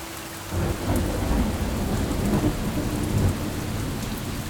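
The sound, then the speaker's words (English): Steady, dense rain pours down with a deep, continuous rumble of thunder rolling underneath, loud throughout, with no voices. “Stand by any river in a rainstorm and your eyes will show you the obvious.”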